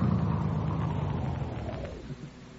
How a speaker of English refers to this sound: Hey, look, here comes a car now.